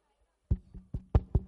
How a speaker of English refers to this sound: I'm knocking. I'm not doing anything. I'm just knocking.